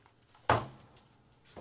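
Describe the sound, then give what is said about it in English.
A door is opened to let someone's mother in, with a sharp clunk that rings briefly, followed a moment later by a softer knock of the door or latch, with no one talking. “Go let your mom in the door.”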